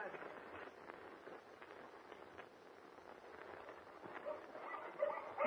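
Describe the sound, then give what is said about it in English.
A pack of huskies barks and yelps in a steady, overlapping clamor, the noise rising slightly toward the end, with the odd whimper mixed into the din. “Gosh, see those huskies bark, Mr.”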